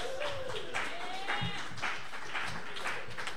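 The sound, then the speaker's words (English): Hands clap in a quick, uneven flurry for a few seconds, steady in loudness, with a thin whistling tone sliding upward early on and again midway. “Clap for that.”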